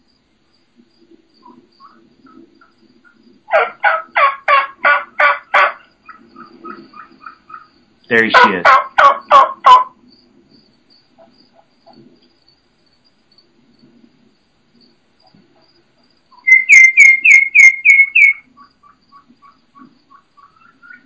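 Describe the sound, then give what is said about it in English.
A turkey hen gives rapid, very high-pitched calls in three quick bursts of short notes, almost flutelike, with quiet pauses between and a brief spoken remark. “you can hear that hen just out there. So it's high, very, very high pitched, almost, you know, flute like or almost songbird like, and very, very fast paced.”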